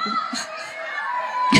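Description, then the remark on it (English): A crowd of excited audience members yells and clamors over one another to be picked, a loud, continuous wash of shouting, with higher-pitched cries breaking through near the end. “If you're yelling right now, you're not going to.”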